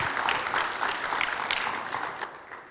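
A church audience applauds a member who has just spoken, many hands clapping in a dense, steady wash that stays fairly loud and gradually tapers off toward the end.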